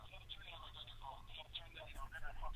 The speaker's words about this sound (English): Turn down your phone. You got to turn down the whatever the fuck's echoing like that.